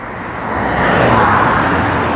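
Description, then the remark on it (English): Loud roar of traffic with cars rushing fast by on a road in Mexico, a broad whooshing noise that swells partway through and stays strong to the end. No one speaks. “The cars are going fast.”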